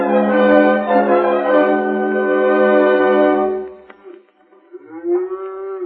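A cow lets out a long, loud, low moo that holds steady for several seconds and then trails off; after a short pause a second moo begins, rising in pitch.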